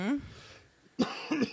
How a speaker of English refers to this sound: Oh, me too. I'm coughing over here.